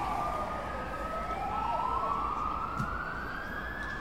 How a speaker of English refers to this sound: But on the way there, fire trucks are racing past you.